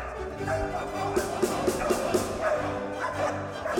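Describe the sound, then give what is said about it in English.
Real dogs bark with the Danish Chamber Orchestra under chief conductor Adam Fischer, a quick run of short, evenly spaced yaps, moderately loud, layered over a steady sustained musical backdrop. “Most orchestras use a recording of dogs, but the Danish Chamber Orchestra, under Vito and chief conductor Adam Fischer, decided no, sit, stay, come.”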